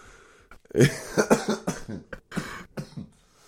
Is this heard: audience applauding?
no